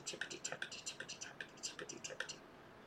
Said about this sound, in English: People like mechanical keyboards, okay. And I have special order cap heads that are pretty colors. It looks like a strawberry. Okay. The keyboard looks like a strawberry. Okay, it sounds pretty. It is pretty.